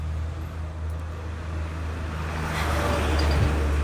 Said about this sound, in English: Why is every fucking truck driving by right now?